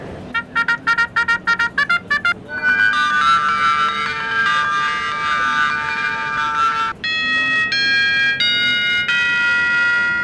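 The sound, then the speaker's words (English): A Chroma smart doorbell, which plays 12 different tunes, is demonstrated at a show, playing electronic chime tunes: a quick run of about nine short bright beeps, then longer sustained melodic notes stepping between pitches, loud and clear with no talking. “And we've also got the Chroma version, which plays 12 different tunes. I can play some of those to you if you'd like to.”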